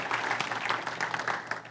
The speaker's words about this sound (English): Come on, if you believe that, give the Lord a hand clap.